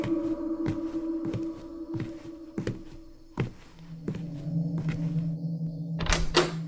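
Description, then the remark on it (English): A door shuts with a solid thud near the end, after a series of softer knocks and footstep-like bumps over a steady low hum. No one speaks. “As soon as the door closes, he hears a voice.”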